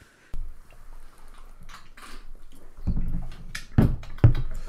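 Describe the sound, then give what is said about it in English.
Wet slurping of a drink, a few irregular sips and mouth noises that grow louder and fuller toward the end, with no talking. “the first sounds of slurping, guys.”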